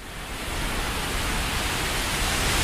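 A steady, even hiss from a white noise machine that looks like a 1990s boombox fills the whole recording at a constant moderate level, with no talking and no breaks.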